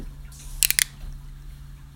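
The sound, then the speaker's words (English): A cold Coors Light beer can cracks open with a quick cluster of sharp metallic snaps, set against quiet surroundings with a low steady hum and no talking. “That's a cold Coors Light. Nice. You can hear that at home.”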